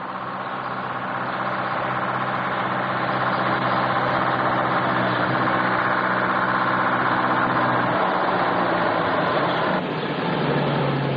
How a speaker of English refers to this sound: Leaving the field, they find themselves in a narrow country road. Hearing a lorry coming up fast behind them, they stand in the middle of the road and thumb for a lift.